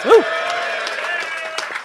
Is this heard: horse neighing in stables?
no